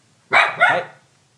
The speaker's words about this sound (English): Hey. What are you barking at, bro? There's nothing out there. It's laundry.